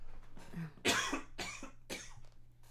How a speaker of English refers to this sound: I need to cough. Hold on.